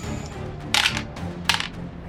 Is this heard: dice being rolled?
yes